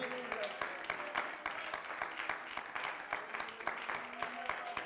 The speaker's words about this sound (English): Oh, clap your hands one more time.